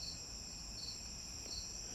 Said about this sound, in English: Man, it's a loud-ass cricket. Watch, he'll get quiet. No, I thought maybe it was going to get quiet when I started calling it out, but still chirping.